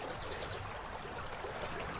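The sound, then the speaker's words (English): A shallow river flows steadily over a limestone bed, a soft continuous wash of rippling water with faint trickles, even throughout, with no voices. “It's a limestoney bed of the river, so it looks a bit like a chalk stream.”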